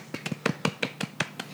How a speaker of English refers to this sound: Shout out to the golf clap.